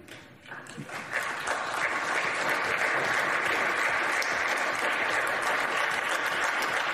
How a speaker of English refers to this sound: And they even stand up to applaud Mitt Romney. And oh, is he soaking it in?